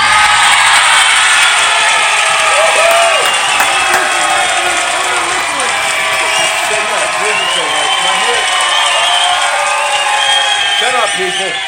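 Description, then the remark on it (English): A loud, dense crowd roar fills the whole stretch, many voices shouting and whooping together with scattered higher yells rising above the steady wash of noise. “Where's the cheer?”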